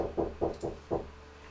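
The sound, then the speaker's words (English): Four muffled knocks on a door in a quick, slightly uneven rhythm, fairly soft, with no voices in the short stretch of quiet afterward. “And then eventually the footsteps don't recede, and instead you hear a...”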